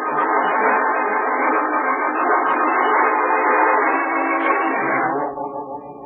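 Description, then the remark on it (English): A loud, steady roar of a train pulling into busy Grand Central Station fills the scene, a dense rumble with faint whistle-like tones that eases off near the end. No one speaks. “That's where we begin. Grand Central Station.”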